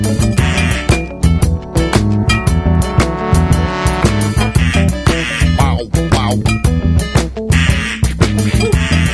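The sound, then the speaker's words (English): Repeated duck-call quacks ring out in quick bursts over loud, driving rhythmic music, with a brief excited voice exclaiming near the start. “Can you give me a duck call? I can give you a duck call. Let's get some ducks in here.”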